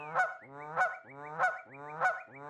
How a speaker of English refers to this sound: I was going to give the Canada goose a much lower score, but you know, I don't even want to argue with you. So I too am going to give it a 5 honk.